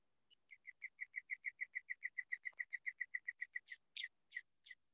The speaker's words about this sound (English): The sounds of the birds are the content.